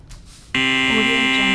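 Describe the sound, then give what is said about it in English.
A loud, harsh game show buzzer blares abruptly after a brief quiet moment and holds steady, a thick, rasping tone rich in overtones that sustains for over a second, used to buzz someone each time they talk. “I'm just going to keep buzzing you every time you talk.”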